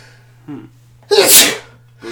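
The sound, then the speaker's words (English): A single loud sneeze bursts out after a brief inhaled buildup, sharp and breathy, with a steady low hum running underneath throughout; the sneeze comes from allergy season. “Bless you. Thank you. Allergy season.”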